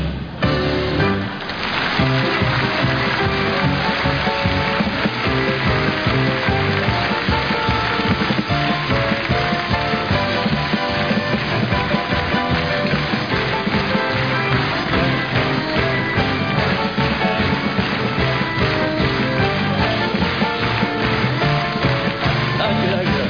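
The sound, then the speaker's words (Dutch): A large audience applauds, a dense, steady wash of many hands clapping that holds at an even, loud level for over twenty seconds without fading. “Het hele land hoort u klappen, dat weet u, hè?”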